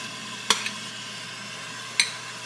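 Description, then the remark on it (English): A steady, low sizzling hiss from a pan as half a cup of ghee is stirred into a mixture with saffron water, with two sharp metallic clinks of a utensil against the pan spaced a second and a half apart. No one speaks. “So once I've sort of incorporated that saffron water, I'm going to add 1/2 of our 1 cup of ghee.”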